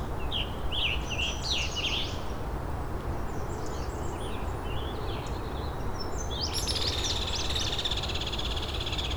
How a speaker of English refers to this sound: And a hairy woodpecker.